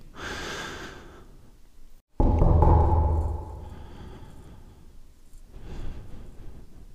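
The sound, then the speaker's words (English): Heavy breathing of a person waiting after knocking on a door, with a sharp intake, a loud rushing exhale, then slower, uneasy breaths continuing on their own, no voices. “Listening to your own breathing, waiting.”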